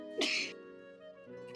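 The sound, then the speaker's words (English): A person imitates a wounded character coughing as he falls to the ground: a sharp, breathy burst followed by a drawn-out, strained vocal groan, with another cough starting right at the end. Fairly loud. “And he's like coughing.”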